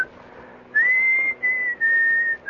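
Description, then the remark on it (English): A man, a composer, whistles his own tune, a clear steady tone in three sustained phrases with brief breaks between, stepping between a few pitches over a faint background hum. “And we will put you down then as a composer who whistles his own tunes.”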